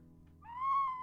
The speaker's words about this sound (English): Okay, here's the ocarina pause. It's a Spanish clay whistle because there may be an advert played.